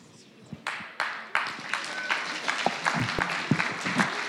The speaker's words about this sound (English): I expect a similar amount of applause.